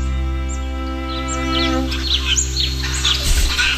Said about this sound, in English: Titmouse.